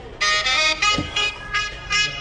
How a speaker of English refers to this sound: Yes. Your ringtone, of course, that would be your ringtone.